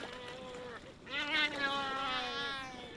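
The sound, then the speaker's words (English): Harsh, wavering squawks and drawn-out braying calls from several black-footed albatrosses overlap in a noisy squabble, fairly loud, rising in intensity after a brief lull, as the birds fight over bait scraped off fishing hooks at the gunwale of a boat. “Birds went up to grab some of it, and they're arguing with each other, as we can hear.”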